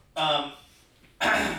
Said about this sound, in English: Yeah, he keeps on coughing.